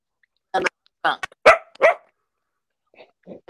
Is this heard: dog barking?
yes